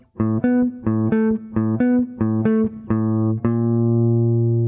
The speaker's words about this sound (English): So here's what the bass part sounds like.